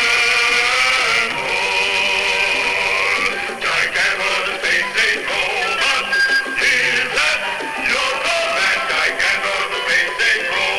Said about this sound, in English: Here's the team tune for Gigantor. So shit. No, I don't remember that. But it sounds ominous.